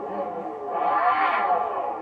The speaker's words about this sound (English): the fact that it's going to have an exhaust system that is as loud as their Hellcat engine. So it should be able to reach 126 decibels of sound. And you can listen to it here.